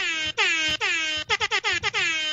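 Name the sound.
air horn blasts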